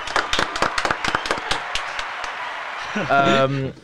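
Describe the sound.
A brief round of applause: sharp, irregular handclaps that thin out and fade over a couple of seconds, followed by a voice speaking at the end.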